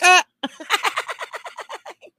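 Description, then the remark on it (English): A voice imitates a chicken: a loud, sharp squawk, then a brief pause and a quick run of about a dozen rhythmic clucks that gradually fade, with no other talk. “Make you look like a chicken. Pukka!”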